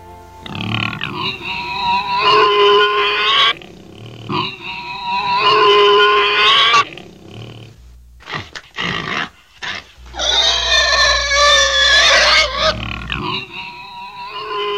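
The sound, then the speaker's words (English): A pig squeals loudly and shrilly in three long, piercing bursts, with short choppy grunts and snorts in between, with no one talking. “My, that pig surely has a pair of lungs.”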